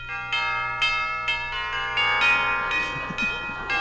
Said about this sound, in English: It's a hunk of doorbell, isn't it?